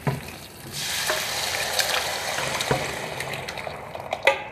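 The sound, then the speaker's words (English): A loud, steady sizzle flares up as someone cooking pours liquid into a hot pan, hissing and crackling for several seconds with scattered pops and spatters, no voices. “But I don't know if I should pour this in there or not. Yep, I am.”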